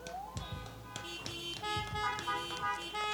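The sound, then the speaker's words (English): Several car horns honk together in overlapping blasts, some long and steady, others short, from people sitting in their cars at an outdoor fellowship gathering on a hot morning, with no one talking. “Y'all can honk if you want to hear me.”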